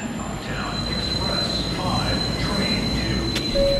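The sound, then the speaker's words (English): A subway train rumbles steadily through Fulton Center, a subway station and shopping mall in Manhattan, a thin high wheel squeal ringing above the low roar, with faint voices murmuring in the busy background. “Like Fulton Center, a shopping mall and subway station in Manhattan that hundreds of thousands of people pass through every day.”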